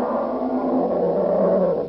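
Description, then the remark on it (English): A troll, a tall, skinny, green rubbery-skinned humanoid creature, gives a deep, sustained monstrous roar, loud and rough, holding steady for about two seconds before tapering off slightly at the end, with no talking. “It is a troll.”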